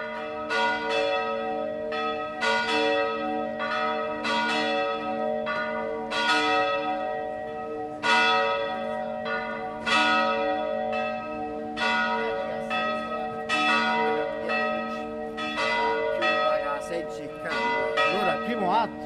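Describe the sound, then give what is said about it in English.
Church bells in an alley in Rome peal steadily, ringing in the hour with repeated strikes, their overlapping tones ringing out loud, each stroke blooming and lingering into the next with no voices present. “Walking down an alley in Rome, I captured church bells ringing in the hour.”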